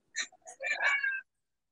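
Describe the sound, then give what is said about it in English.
A single cat meow, drawn out for about a second with a short chirpy start, clear with nothing else around it. “And then meow.”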